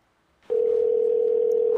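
A telephone ringback tone for an unanswered call sounds once as a steady, loud electronic hum lasting over a second, clear with no one speaking, cut off by a brief higher beep.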